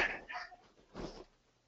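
Two short, rough coughs separated by a brief pause, the first slightly longer and breathier, the second a sharper burst. Both are fairly soft, with no talking.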